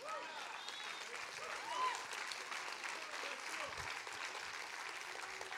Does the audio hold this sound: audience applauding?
yes